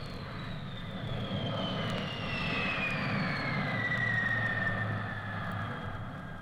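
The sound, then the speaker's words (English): A jet plane engine roars steadily with a broad low rumble, while a high whining tone slowly glides downward as the aircraft passes. The sound is loud and continuous, with no voices. “You can see the rhythms of a ramrod, a piston, a shuttle, a washing machine, an egg beater, or an airplane propeller, and a jet plane.”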